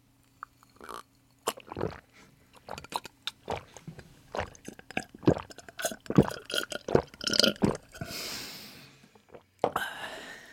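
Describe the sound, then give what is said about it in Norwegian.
During a radio ASMR segment, someone drinks a glass of water: a long series of wet gulps, swallows and mouth clicks in an irregular rhythm, ending in a couple of breathy exhales. No one speaks. “Nå skal jeg drikke et glass vann og sjekke om det.”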